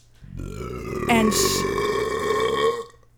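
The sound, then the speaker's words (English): A long, loud, guttural burp rumbles for nearly three seconds, resonant, with a rough, drawn-out tone that swells and then trails off. “Dude, did you blow another fucking burp?”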